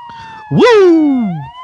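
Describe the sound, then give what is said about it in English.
A loud emergency vehicle siren wails outside in Melbourne on a Sunday morning, its pitch jumping up sharply and then sliding slowly down over about a second, with a steadier high tone droning beneath it. “I'm getting interrupted by sirens already.”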